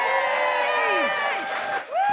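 An audience cheers loudly, with overlapping high whoops and shouts rising and falling over a steady wash of clapping and crowd noise, briefly dipping before swelling again.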